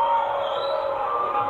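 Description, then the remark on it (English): An audience cheers during public comment at a meeting after a speaker's mic is cut off: a steady, dense wash of many voices holding at an even loudness for about a second and a half, with no single speaker standing out. “You can hear the people cheering who were silent.”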